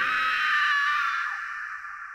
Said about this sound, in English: She noticed a chain attached to one of its deer-like hooves and let out a high-pitched scream.